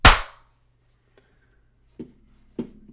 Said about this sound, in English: I mean, I clapped before you.